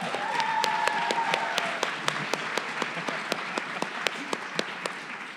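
An audience applauds in a steady round, a dense wash of clapping with sharper individual claps popping out at fairly regular intervals. A brief high whistle or cheer rises early on.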